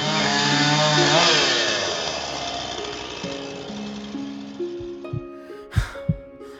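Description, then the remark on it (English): A chainsaw called Charlie Chainsaw revs loudly, its buzzing pitch rising and falling, then settles into a lower idle with a couple of sharp sputters near the end. “Oh, Charlie Chainsaw, I love you.”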